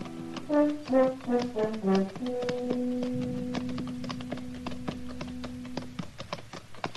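Horses' hooves clip-clop in a steady, unhurried rhythm as riders come up the almost deserted main street of El Cater at noon, mixed with a short melodic musical phrase and then a long held note underneath.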